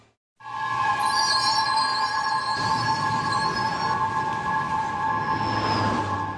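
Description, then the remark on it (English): A New York City subway train rumbles steadily along the rails, with sustained high-pitched wheel squeal and metallic screeching over a continuous low roar, loud throughout. “The target, the New York City subway system.”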